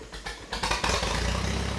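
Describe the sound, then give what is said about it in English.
A 1951 Minneapolis Moline U tractor engine from Illinois idles, a steady low chugging rumble with a quick rhythmic pulse that swells slightly partway through and then holds even, with no voices. “We're going to learn about a Minneapolis Moline U.”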